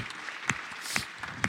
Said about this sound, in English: Can you give yourself a big clap offering then? Thank you.